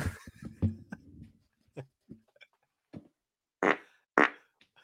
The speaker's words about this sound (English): Oh, you're going to fart.